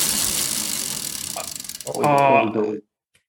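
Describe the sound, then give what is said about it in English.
A spinning wheel ratchets with rapid, steady clicks that gradually slow as it loses speed, then a voice briefly calls out over the final ticks before everything stops. “Right, let's give it a spin.”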